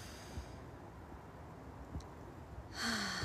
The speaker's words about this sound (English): And just start breathing and just feel the intake into your nose. You can be walking too like me. And then out through your mouth and in through your nose.